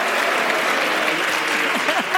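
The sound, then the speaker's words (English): A studio audience applauds steadily for about two seconds as Luke Burbank, host of TBTL and Live Wire, is introduced. Crowd voices booing swell through the clapping toward the end, and the whole clip stays loud. “They're booing the fact that you lied about growing up in Seattle.”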